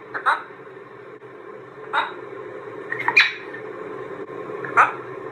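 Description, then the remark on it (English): A macaw, in a clip from Parrot Wizard, imitates human speech in four short, raspy, word-like calls spaced about a second or more apart, each a bright squawky burst over a steady low background hum. “Here's a macaw talking.”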